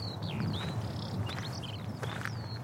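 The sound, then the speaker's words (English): A skylark (Alauda arvensis) sings a rapid series of high, whistled chirps and sliding notes over a steady roar of wind noise in very windy weather. No one speaks. “I'm pretty sure that I know the name of that bird now, but let's check it with Chirp-O-Matic.”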